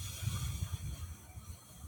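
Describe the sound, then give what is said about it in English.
A long, steady breath out through the nose, heard as a soft, continuous breathy hiss with a low rumble underneath, lasting the whole stretch without a break. No one speaks. “And then breathe it all out.”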